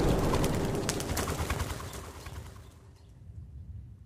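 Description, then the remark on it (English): A rooster crows loudly, its rough, noisy call filling the first few seconds before trailing off into quiet, with no talking. “The cockle crows a second time.”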